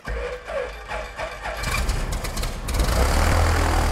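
A farmer's small propeller plane in northeast Nebraska sputters to life after a brief quiet moment, then settles into a loud, steady idling rumble, with no voices.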